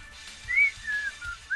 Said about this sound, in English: I heard somebody whistling. Not saying it was me, but it was me.